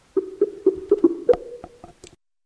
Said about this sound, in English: Tell me if you guys just heard that cough, because I'm going to try and mute myself when I have to cough.